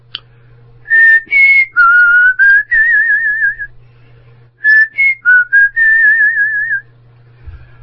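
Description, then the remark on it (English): A person walking outside on a gravel road whistles a short tune, clear, in two similar phrases of quick notes ending on a long, wavering held tone, with a faint low hum underneath. “Later, a few days later, we were asleep, and I woke because I heard someone walking outside in the gravel road and whistling. I still remember the whistle.”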